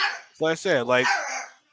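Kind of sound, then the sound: animal, dog barking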